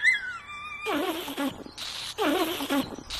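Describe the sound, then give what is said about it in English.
A dinosaur named Saber cries out in a thicket: a high squeal slides downward, then two loud bursts of wavering, raspy wailing with hisses follow with a short gap between them. No one speaks. “They walked on until they heard a loud squealing noise somewhere in the thicket.”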